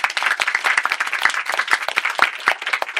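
A crowd applauds steadily for about three seconds, a dense, fairly loud patter of many hands clapping at once with a few sharper individual claps standing out.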